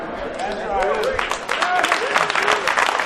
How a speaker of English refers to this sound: You know, I get mad and stop the clapping when it's go jive turkey clapping.